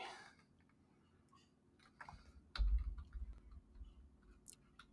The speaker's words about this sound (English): The sound of keyboard keys.